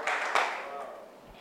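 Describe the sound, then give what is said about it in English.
An audience claps for Jesus at the close of a church service, a dense, steady patter of many hands, with one sharper clap standing out early before the applause gradually thins and fades. “Clap your hands for Jesus and let's bring the service to a close now.”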